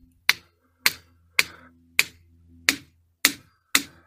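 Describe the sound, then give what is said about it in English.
A dense, regular rock struck with a hammer seven times at a steady, even pace, each hit a sharp, bright, dry clack that dies away quickly, with a faint low hum underneath and no voices. “That's a regular rock. You can hear how dense it is.”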